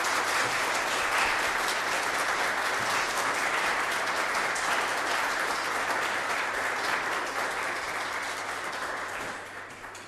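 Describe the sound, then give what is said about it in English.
An audience at the end of a Mass applauds the boys and girls steadily for about ten seconds, a dense, even crackle of many hands clapping at once, holding its strength before easing off slightly at the end. “So a big round of applause for the boys and girls.”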